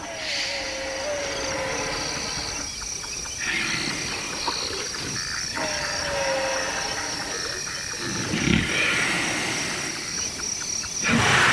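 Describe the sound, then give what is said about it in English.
Elephants snoring as they sleep outdoors in Kenya's Masai Mara Park, recorded by Chris Watson. Slow, deep rumbling breaths recur every few seconds beneath a steady, dense chorus of crickets and insects, with no voices present. “Some even snore while snoozing near bystanders.”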